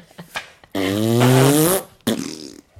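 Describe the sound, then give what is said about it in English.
A loud, sustained fart sound effect lasting about a second, buzzing and rippling, followed by a shorter raspy burst; no talking. “A rump rooster is a loud fart in the middle of the night with enough cracking power to wake you up.”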